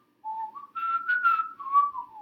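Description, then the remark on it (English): A person whistles a short melody alone, clear, with a few sliding pitch changes over about two seconds and no talking. “I can't whistle. I wish I could. I can't whistle well. I can get, like, little spurts.”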